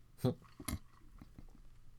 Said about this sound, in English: Yes. I'm sorry, I was swallowing when you said that.